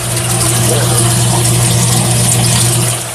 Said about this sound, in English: Make sure you have enough water in it. You can hear the motor running.